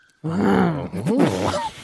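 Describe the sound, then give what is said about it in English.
A person imitates a lion's roar with a drawn-out, throaty growling voice, rising and falling over about a second and a half before trailing off. “Well, I reckon I'm, well, my partner reckons as well, a bit of a lion.”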